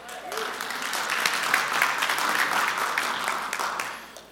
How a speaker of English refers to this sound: There'd be a lot more clapping if everybody would have came to it